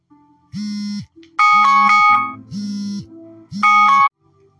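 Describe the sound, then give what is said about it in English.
An electronic alarm goes off loudly, alternating a low buzzy tone with a bright, higher chiming tone in four steady bursts, with no talking. “Please excuse the alarm.”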